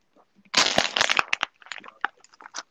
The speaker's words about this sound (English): No, I every time I finish a water bottle, I just, like, flatten it out.